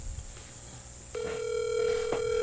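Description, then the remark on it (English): A phone ringback tone, from a call placed to a friend, starts partway through and holds steady over a faint hum, heard through a speakerphone with no one talking. “No, put him on speaker, too.”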